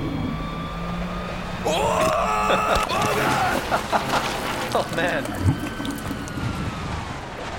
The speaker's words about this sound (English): The big cataclysmic moment in this episode, … flushing the toilet.